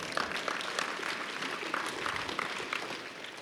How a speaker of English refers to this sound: you can clap for that